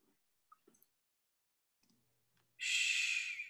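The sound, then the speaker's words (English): A few faint clicks and soft rustles in near silence, then a sudden, loud gasp for breath as a person wakes, one sharp ragged inhale lasting about a second. “wakes, gasping for breath.”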